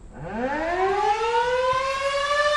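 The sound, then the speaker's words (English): A civil defense warning siren in Washtenaw County sounds its monthly test, winding up from a low growl into a steady, rising wail, loud and sustained throughout with no talking. “That's the monthly test of the county's warning sirens.”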